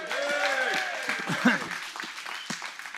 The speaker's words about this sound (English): So everyone here on the Wills Point location, let's just give Edgewood a round of applause real quick.